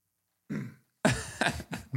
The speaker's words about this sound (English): Found one flaw with the Zevia during the pod is I can't stop burping while we're recording this.